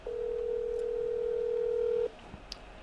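A steady, unbroken phone tone from a voice call being placed holds at one mid pitch for about two seconds, then cuts off abruptly, leaving faint background noise and a couple of tiny clicks.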